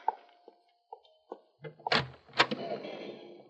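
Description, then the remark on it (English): A door is unlatched and swung open for someone who has arrived at it: a few light clicks and rattles of the handle, then two solid wooden thunks as it opens, followed by a soft lingering rumble of room noise. “I'll get that door myself.”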